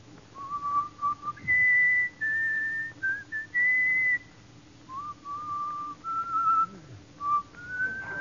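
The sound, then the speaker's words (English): A man whistles the tune Coming Through the Rye alone, clear, the notes rising and falling in short sustained phrases with brief pauses between them. “Let me hear your whistle coming through the rye.”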